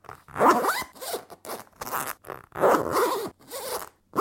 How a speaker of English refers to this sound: So, when I've been trying to do it up, I have to try again and again and again and again and again and again and again to make the zip work, and it makes this noise.